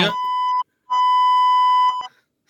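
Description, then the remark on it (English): A misfiring censor bleep tone sounds twice: a half-second steady mid-pitched beep, a short gap, then a longer beep over a second long that stutters and cuts off abruptly, with no talking. “Now the beeper's misfiring.”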